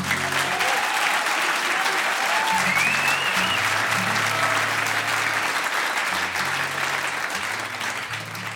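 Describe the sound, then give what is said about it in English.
An audience at a music show claps steadily and loudly for several seconds for everyone involved in running the venue, a dense, sustained wash of applause with a few faint voices and whistles mixed in. “So I think you should give everyone a round of applause here.”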